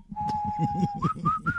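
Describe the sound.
Someone whistles a long, steady note, then a few short, higher whistles that slide upward, all over a low, rumbling murmur in the background.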